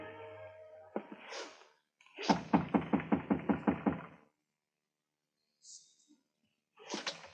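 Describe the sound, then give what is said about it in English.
The handle of an unlocked office door is rattled in a quick run of about eight sharp clicks, followed by quiet, a faint scrape, and then the soft whoosh of the door swinging open. “The door was unlocked.”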